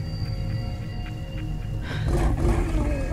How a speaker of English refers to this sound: You hear the growling sound as Trick is flung across the shed.